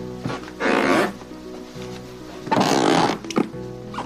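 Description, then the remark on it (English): Floorboards creak and squeak under weight: two drawn-out, groaning creaks followed by a shorter squeak, loud, with no talking. “How about squeaky floorboards driving you insane?”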